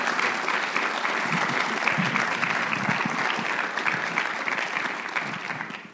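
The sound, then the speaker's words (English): An audience at Trinity Assembly of God applauds a guest in the morning, a dense wash of clapping that holds at an even, fairly loud level for several seconds before beginning to taper off at the end. “Go ahead and give him a round of applause this morning.”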